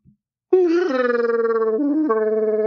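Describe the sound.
A voice does a Chewbacca impression: one long, loud, throaty wail with a fluttering rattle, dipping briefly in pitch near the end before rising again.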